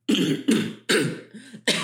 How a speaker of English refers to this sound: Oh, the cough cover up. That's a great one. That's exactly what I did.